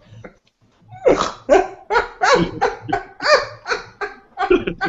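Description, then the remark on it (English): A big bullmastiff dog barks in a rapid, steady run of about nine loud, deep barks, with no talking over them after a brief quiet start. “He's a like a he's a big fucking dog. A large dog. Giant hound boxer thing.”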